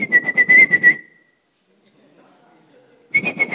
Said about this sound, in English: In a soccer match, when you are playing and you get hit, okay, there are 22 players on the field, or basketball, for that matter. When one player gets hit, the next thing is the referee blows the whistle.